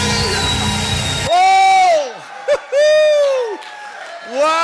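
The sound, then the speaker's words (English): A dense wash of crowd noise and clapping gives way to three loud, high whooping shouts, each swooping up and then down in pitch, with brief gaps between them, as a church audience shouts and claps to God. “Come on, somebody shout and clap to God.”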